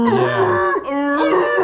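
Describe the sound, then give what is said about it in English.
A voice lets out a loud, drawn-out wailing scream imitating a whale, two sustained howling tones split by a brief break, alone with no talking. “He's going to beat … so bad that …'s going to make his, you know, scream, his whale sound or whatever.”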